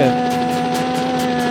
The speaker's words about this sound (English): It's literally the helicopter.